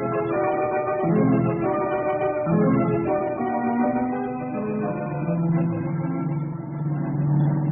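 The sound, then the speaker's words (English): A car engine strains and revs continuously during a car chase, pitch rising and falling as it accelerates hard, loud with a steady roaring drone throughout. “Tasso and Harper are certainly giving their car all it can take.”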